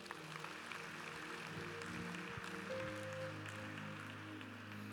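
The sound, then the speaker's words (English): An audience claps for themselves steadily in a dense, continuous wash of applause, with sustained keyboard chords holding underneath throughout. “Clap for yourselves.”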